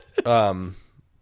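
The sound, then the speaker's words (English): A single drawn-out voiced yawn, fairly loud, swelling quickly and then trailing off after about half a second, followed by quiet. “Why the fuck I'm yawning so much?”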